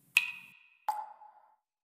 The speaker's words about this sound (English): Cue water sounds.